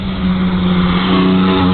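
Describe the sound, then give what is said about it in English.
A Torana LC GTR car without a rear wing drives past with its engine rumbling loudly, a steady throaty drone that swells slightly toward the end, with no voices over it. “And I beg your pardon, it's an LCGTR. It doesn't have the wing on the back.”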